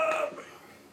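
A single short, moderately loud burp with a brief voiced, tonal quality that fades quickly into quiet. No talking.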